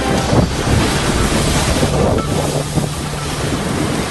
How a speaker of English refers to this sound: Huge waves crashing onto shore on the south coast this morning after powerful wind gusts blew across the region.